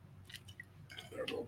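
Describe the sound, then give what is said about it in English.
Wet chewing of chicken wings: a few crunchy, squishy bites and smacking mouth sounds in an uneven rhythm, with a faint low murmur underneath and no clear speech. “Just gonna keep on munching.”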